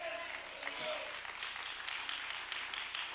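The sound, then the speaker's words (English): Soft, steady, restrained applause from a church audience, a dense patter of many hands clapping at low volume with no cheering, sustained evenly throughout. “Now, you're clapping like you're at a little Masters golf tournament or something, or a tennis match, and I'm hoping you can get more fired up than that by the time the day is over.”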